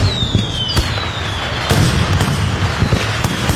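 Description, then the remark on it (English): Fireworks going off in a dense barrage: sharp booming bursts a few times over constant crackling, with a faint descending whistle streaking overhead. No voices, just the steady rumble and pops of the display. “I'm talking about fireworks.”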